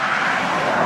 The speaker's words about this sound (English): Another plane.